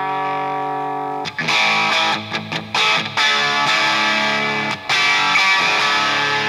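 A crunchy, moderately overdriven plexi-style electric guitar rhythm tone from an amp's clean channel cranked up, gain wound up a little: a sustained chord opens, then choppy strummed chords with brief gaps follow, loud, with no voices.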